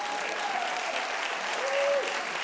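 A crowd claps steadily in sustained, dense applause that holds at an even level throughout, with a faint whistle-like tone briefly rising above it near the end.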